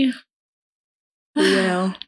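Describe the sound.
A person yawns once, close and fairly loud: a drawn-out voiced exhale lasting just over half a second. It follows a brief vocal sound and a moment of silence.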